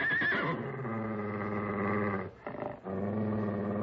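A stallion neighs loudly and continuously, a harsh, shrieking whinny with strong harmonics, briefly breaking off near the end before resuming. No one speaks.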